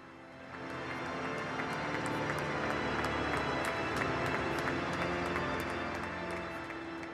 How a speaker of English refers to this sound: Well, those were the pictures right at the start of the funeral as the coffin was brought in, and just the clapping from all of those people gathered both inside and outside the cathedral.